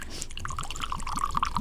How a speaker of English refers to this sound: All right. Let's see. I'm pouring it into my glass here. I like Knob Creek.